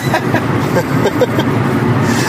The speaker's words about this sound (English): And we're driving from Minneapolis, Minnesota to Madison, Wisconsin.